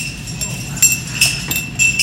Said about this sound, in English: So you're going to put it between these two fingers and grab it like this. And the action that we're looking for is keeping the bowl of the spoon in contact with the glass the whole time.